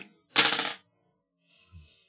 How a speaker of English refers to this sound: So roll that dice.